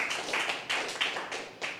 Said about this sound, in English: That's a bit of a crummy clap compared to what's going on here. But anyway, that's right. Next one, you'll get a better one.